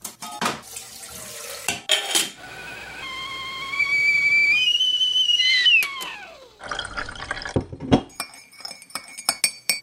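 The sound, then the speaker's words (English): A kettle put on for tea whistles with a rising, wavering tone that bends down as it stops, surrounded by running water, then teacups and spoons clink sharply several times. No one speaks. “Would you like to have some tea? I'd love to have some tea. Let's put the kettle on.”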